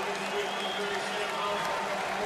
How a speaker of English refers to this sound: So the Celtics have subbed out the starters. They get a nice round of applause for an incredible Boston team.